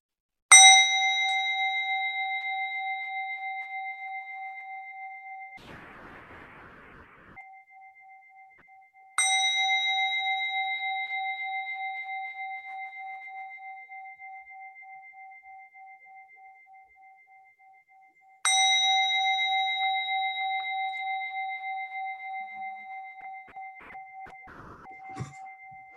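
A small meditation bell is struck three times at the start of a meditation, spaced about nine seconds apart, each clear metallic tone ringing out and slowly fading before the next strike. There's no talking, with faint rustling between rings.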